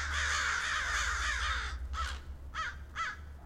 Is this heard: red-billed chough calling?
yes